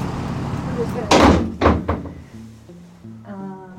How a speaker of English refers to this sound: walks to this side door of the jail, like definitely not the main entrance, and she just opens it. No, this is just how you get in.